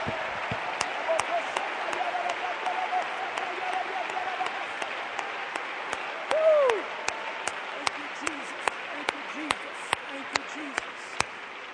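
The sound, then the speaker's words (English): A church audience at a service applauding steadily throughout, many hands clapping together in a dense, sustained wash with sharper individual claps standing out, and a brief vocal cry partway through. “Oh, clap your hands one more time like a Pentecostal apostolic church.”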